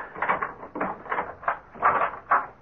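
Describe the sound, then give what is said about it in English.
A series of moderately loud clicks and rattles in an uneven rhythm as Boggs works the lock with keys, followed by the clunk of the door being opened to the late scientist Von Linden's rooms. No one speaks. “Open the door, Boggs. You have the keys?”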